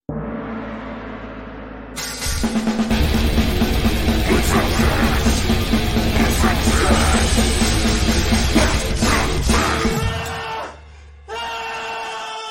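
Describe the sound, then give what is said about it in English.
A short outro song of about 15 seconds, loud and chaotic in a rock style, with dense distorted instrumentation and yelling vocals. It builds to a screamed ending, cuts off briefly, then returns for a final burst. “I didn't write the scream, but okay. I wrote and recorded the song.”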